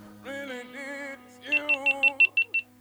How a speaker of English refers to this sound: Wait for the beep.